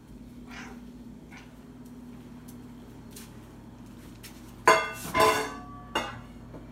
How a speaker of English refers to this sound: Did I record this audio clue this morning while I was feeding my cat? Yes, I did. The sound, it sounds like a cat chirping at a squirrel outside a window.